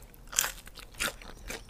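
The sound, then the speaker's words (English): A refrigerator ice maker, making ice, drops it hard in three short, crunchy clattering bursts spaced about half a second apart, fairly quiet, with no talking. “That's my refrigerator. She's making ice for me right now. And she drops it really low.”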